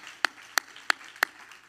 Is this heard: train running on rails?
no